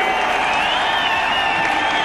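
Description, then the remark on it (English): A loud, steady roar of a stadium crowd cheering at a football match between Australia and the Solomon Islands, as goalkeeper Mark Bosnich comes forward to take a penalty. It is a dense wash of many voices that holds constant for about two seconds without pause. “Well, this has brought the crowd to life all of a sudden.”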